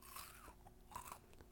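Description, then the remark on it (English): A close, crisp crunch of someone biting into a cookie, followed by a few brittle chewing crackles, loud and right up against the microphone with no talking. “I'm going to get real close for this crunch.”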